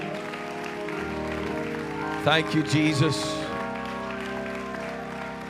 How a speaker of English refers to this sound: Would you give God a great big hand clap of praise tonight?